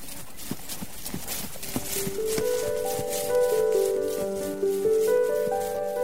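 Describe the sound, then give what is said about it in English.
Horse hooves clip-clop in a steady walking rhythm, crisp, before sustained musical tones swell in after a couple of seconds and mostly cover the hoofbeats. “about the simple but important task of grooming your own horse.”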